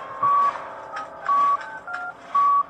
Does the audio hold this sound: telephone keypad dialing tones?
yes